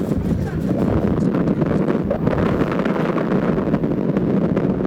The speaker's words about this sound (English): The wind over 30 miles an hour. It is cold. The wind is biting.